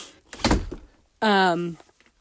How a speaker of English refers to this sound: My door just opened, sorry, let me close it.